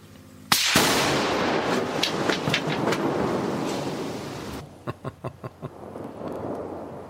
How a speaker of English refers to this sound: So now let's blow this shit up.